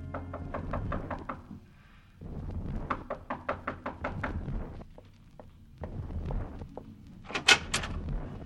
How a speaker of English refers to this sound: I'm from the police. You bring yourself to the wrong door, senor police. Go skin your knuckles in another place.